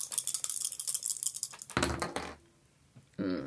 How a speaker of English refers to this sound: So yeah, roll your four dice for me there.